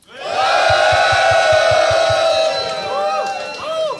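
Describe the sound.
A loud crowd roars and cheers continuously, with a dense wash of voices, shrill whoops and rising shouts cutting through, plus a low rhythmic thumping in the background.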